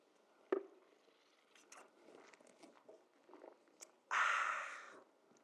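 A short tap, then a few soft, wet slurping sounds of a preacher sipping a drink during a sermon, followed by a loud, breathy exhale lasting about a second. No one speaks.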